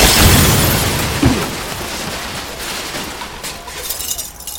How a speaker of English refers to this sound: The explosion shattered several of the dome glass panes and sent me reeling back.